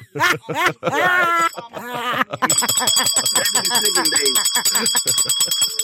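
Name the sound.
bell being rung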